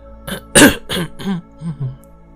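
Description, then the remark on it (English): A man clears his throat: one sharp, rough cough followed by a few shorter, voiced hems trailing off over about two seconds, with no talking around it. “He coughed and looked away.”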